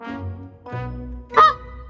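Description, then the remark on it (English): A goose honks three times in quick succession, the first two nasal and drawn-out, the last one louder and harsher, with no talking around it. “He had a giant magic harp and a goose that lays golden eggs.”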